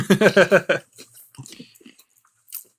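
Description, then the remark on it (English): Crunchy chewing of a milk chocolate sandwich biscuit with a wafer inside: four quick, loud rhythmic chomps, then quieter scattered crunches and mouth sounds fading out. “It's a milk chocolate sandwich biscuit. So it's sort of like a wafer inside.”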